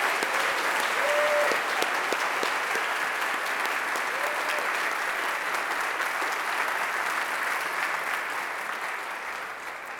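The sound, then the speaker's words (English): Sustained applause from a large audience welcoming the two recipients of the Champion of Character Award, a dense steady patter of many hands clapping that holds strong for most of ten seconds before beginning to taper off at the end. “I invite you to extend a warm greeting and welcome and applause.”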